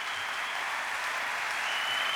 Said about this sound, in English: Okay, can you give him a big clap, please? Thank you.